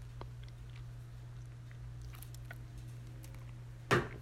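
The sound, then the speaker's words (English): Someone sips wine: faint, wet mouth clicks over a steady low hum, ending in one brief, louder gulp-like burst. No one speaks. “Let me read this after I take a sip of this.”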